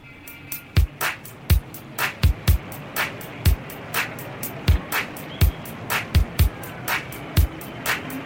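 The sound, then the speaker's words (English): A LinnDrum drum machine loop from the opening of a song plays a steady mechanical beat, punchy kicks alternating with crisp snare and hi-hat hits at an even tempo, clear, with no voices. “So the beginning of the song, you hear this drum loop, right? This program. It's the Lynn drums.”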